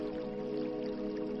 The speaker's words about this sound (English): Beside the spring, there is a beautiful cedarwood tub that is heated and uses the fresh mountain spring water. You will be slipping into this relaxing oasis by the stream to continue to envision your desires while watching the stars above.